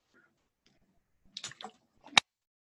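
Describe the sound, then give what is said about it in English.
A short sip of water, fairly quiet: a few wet slurping bursts, then a sharp click as a cup or bottle is set down, with near silence around it. “hold up, my throat is dry. Let me get a sip of water.”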